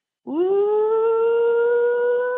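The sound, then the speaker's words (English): A crowd of University of Arkansas supply chain students shouts the opening of the Arkansas Razorbacks hog call, a long, loud 'woo' that swoops upward in pitch and is held steadily for about two seconds. “Calling the hogs with the University of Arkansas supply chain students”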